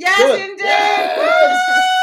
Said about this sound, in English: And unfortunately, this cheering sound effect goes for a lot longer than is actually comfortable. So the cheering's just going to keep on going on.